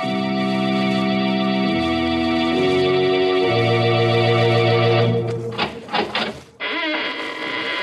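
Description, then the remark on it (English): A long, loud squeaking door creak, a strained, harmonic groan that shifts pitch in steps, then breaks into a few sharp, quick squeals before one final drawn-out creak. No voices. “When you heard the sound of a squeaking door, it was exactly 30 seconds past the hour for murder.”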